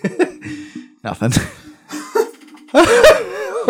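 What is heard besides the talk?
cough mixed with laughter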